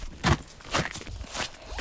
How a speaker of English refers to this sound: I get on my swimsuit and we patter out his back door onto the snow.